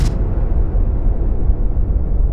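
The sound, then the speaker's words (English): A sudden sharp burst opens into a loud, steady low roar that rumbles on without letup, like pressurized gas blasting out of a truck in the desert in a sustained rush. “Something bottled up, something pressurized, suddenly letting go.”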